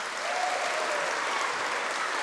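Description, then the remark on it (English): An audience claps steadily for the presenter's helpers after a chocolate-box science experiment, a dense, even wash of applause that holds at the same level from start to finish without anyone speaking. “If everybody could give my helpers a big clap.”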